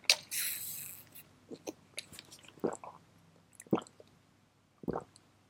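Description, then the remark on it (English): Someone drinks water, with a short rustle at the start followed by three distinct, wet swallowing gulps spaced about a second apart, otherwise quiet. “I have water. Why don't I just drink water?”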